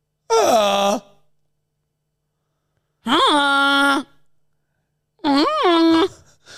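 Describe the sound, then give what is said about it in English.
A person imitates a goose honk three times with their voice: loud, nasal, buzzy blasts about a second long that swoop up and down in pitch, separated by silent gaps. “Do your best honk.”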